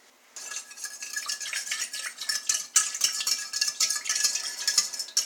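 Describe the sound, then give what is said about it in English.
A utensil stirs 1.5 cups of lukewarm water with yeast and salt in a bowl, making steady scraping, clinking and sloshing sounds in an uneven rhythm for several seconds with no talking. “Okay, and I'm going to mix it in with the yeast and the salt, and I'm going to stir it around.”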